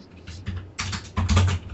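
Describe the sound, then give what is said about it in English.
Hands bash clumsily at a computer keyboard in quick, uneven bursts of clattering keys, growing louder and more forceful toward the end, with no voices present. “Yeah, this is the whole, we got the genius kid on the computer and the old lady sitcom noise, where he just smacks the keyboard with his hands and pack the database.”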